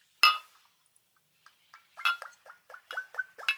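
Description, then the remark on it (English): A single bright clink of a shot glass rings out, followed after a pause by a quick run of gurgling glugs as a drink is poured, clear with no talking. “So, let me get my shot glass here. I've got so many glasses right now. If you would like to pour.”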